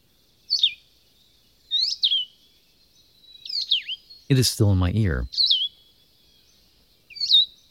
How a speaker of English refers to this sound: though unmistakably a bird note, it yet suggested the bleating of a tiny lambkin. Presently the birds appeared, a pair of the solitary vireo.